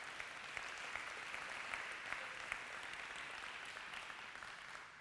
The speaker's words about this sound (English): I know you can clap for that.